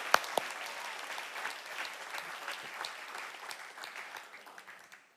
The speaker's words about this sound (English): Hallelujah. Hallelujah. You can clap and just let's give him praise. Let's worship him.